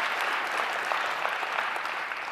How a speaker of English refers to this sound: So go ahead and give yourselves a round of applause. Big number.